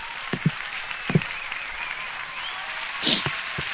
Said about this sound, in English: So there's one thing I forgot to bring on here real quick, and there you go. Everybody loves applause.